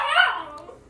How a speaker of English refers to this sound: Sorry, that is my puppy. He kind of wants some attention right now.